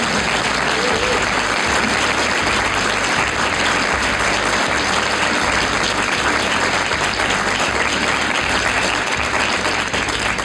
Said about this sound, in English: Well, for those of you who are here live in our theater, how about a round of applause for Mollie Hemingway?